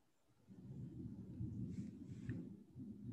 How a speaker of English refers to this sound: Your background is loud. Man, I can't help it. It's thunder. Is it really? It's thunder, yeah. You know, I love the thunder.